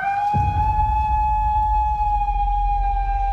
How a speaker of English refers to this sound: The howl has been described as a combination of a wolf and an elk. Someone captured it.